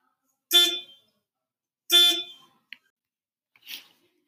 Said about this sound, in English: A car horn goes off and she comes back to the real world, wondering what had just happened.